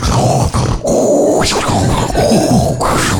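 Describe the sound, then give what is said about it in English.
A voice imitates the scuba-diver-like breathing a woman makes in bed while asleep, in place of snoring: loud, raspy, hissing breaths with gurgling, grunt-like rumbles, repeated in several pulses over a few seconds with no spoken words. “I'll be lying there and I'll wake up to the sounds of deep sea diving.”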